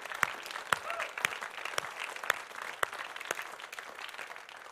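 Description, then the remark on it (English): An audience claps together, a dense wash of applause with sharp, regularly spaced louder claps standing out roughly every half second, steady and moderately loud with no voices. “Come on, one more clap.”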